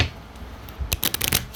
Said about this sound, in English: Somebody didn't really shuffle these that well. Alright. There's fucking 12 cards. You can only shuffle them so fucking well.